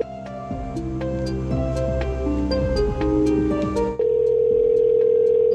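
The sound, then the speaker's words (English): A telephone ringback tone: a steady, loud electronic hum that takes over after a few seconds of busier layered sound, holding evenly to the end with no voices. “Will it ring? It's ringing.”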